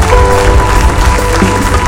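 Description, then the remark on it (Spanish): A crowd claps loudly and steadily for Jesus, the King of Kings, in a dense, continuous wash of applause, with faint sustained musical tones underneath and no voices standing out. “Oh, alguien puede aplaudir al Rey de Reyes.”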